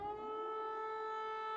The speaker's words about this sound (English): The sirens went all night long and the bombs fell all over the country.